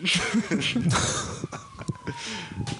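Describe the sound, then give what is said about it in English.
A police siren wails outside, its tone sliding downward, faint beneath voices and background noise. “The cops are coming. It's always the same time in the show.”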